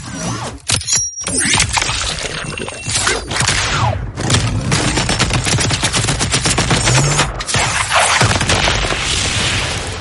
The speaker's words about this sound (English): Yeah, Ed 209 whoops into frame and just lets loose with cannons.